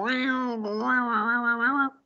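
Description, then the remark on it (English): A person imitates a cat's meow: one drawn-out, wavering mew sung for about two seconds, fairly loud, with no other sounds around it. “If I meow, he sometimes talks back.”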